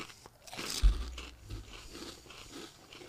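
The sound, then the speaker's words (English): A loud crunch as someone bites into a whole Funyuns onion-flavored ring snack, followed by a few softer crunching chews. No one speaks. “They're very crunchy.”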